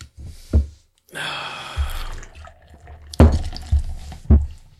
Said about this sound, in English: Yeah, good pour. Straight down, 90 degree angle. Get the foam. That was a terrible pour. Get the foam so it rises to the top. Oh, that's a commercial pour right there. Dude, drink all that foam. Chew it. Let me lap that up.